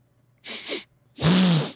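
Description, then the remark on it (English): A person imitates the loud sniffing of the character Miike, known for his sniffer, with two sharp, breathy snorts: a shorter one followed by a longer, stronger one with a brief nasal tone, and no words spoken. “And you just know him for his sniffer.”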